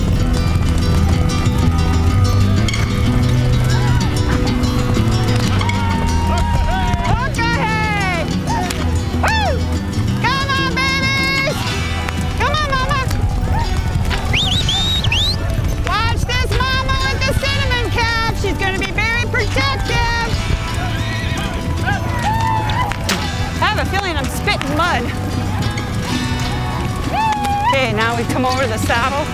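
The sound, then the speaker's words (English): A herd of buffalo and horses thunders down a valley through fog, trailed by dust plumes, as they are run toward a trap: a dense, continuous low rumble of pounding hooves, with high wavering calls and cries rising over it throughout. “They run together, rolling, thundering down the valley.”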